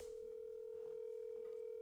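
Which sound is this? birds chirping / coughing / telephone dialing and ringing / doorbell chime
telephone dialing and ringing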